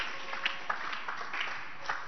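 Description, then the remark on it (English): An audience at a sermon clapping their hands together, a steady dense patter of many claps, with a few sharper claps standing out and no one speaking. “Can you clap your hands for this point?”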